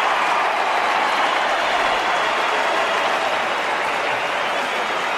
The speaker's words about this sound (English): You'll hear the crowd go up. Every single one of them.